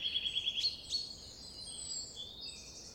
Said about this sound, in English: What bird call are you focusing on right now? Is the bird singing a slow, low song? Is it singing quickly or rapidly? Does it sound cheerful or sad?